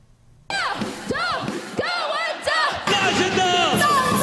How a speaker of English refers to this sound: Political candidates roar slogans at a crowd who shouts them back. Campaign events on the streets of Taiwan have seen many candidates canvassing until their throats are hoarse.